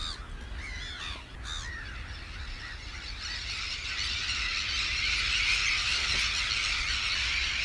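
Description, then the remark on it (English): A noisy crowd of gulls and terns calling and squabbling at Minsmere around 6 pm as the sun comes out, harsh cries and squeals overlapping continuously, with the chorus swelling louder and denser partway through; no voices. “That's the sound of a load of gulls and a load of terns having a fight, as they always are.”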